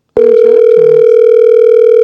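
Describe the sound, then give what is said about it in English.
A phone line rings on an outgoing call to a person in Iowa, dialed again: a loud, steady electronic tone that starts abruptly and holds unbroken, with a few faint chirps underneath at the beginning and no voices. “Wait, call him again.”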